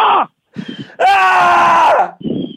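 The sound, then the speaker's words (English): A loud, sustained scream of about a second, strained and harmonic, from a person outdoors in a small nature area, framed by short vocal sounds and breathy noise before and after. “Screaming feels good.”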